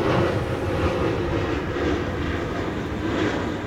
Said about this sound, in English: There's planes going, like, nonstop. There's traffic and trucks.